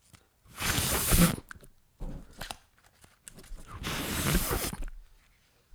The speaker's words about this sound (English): Ripping paper sound.